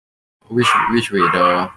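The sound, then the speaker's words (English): A dog barks in a quick run of three loud yaps, each tonal and slightly drawn out, with no pause between the last two. “You know, your dog is really irritating, but I feel that your dog has provided the most insight into to this conversation.”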